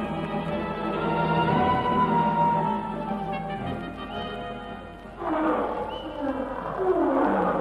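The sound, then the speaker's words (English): A lion roars loudly somewhere ahead, not close, a long, rumbling, harmonically rich bellow sustained for several seconds, followed by a second surging, growling roar. “It was a lion, wasn't it?”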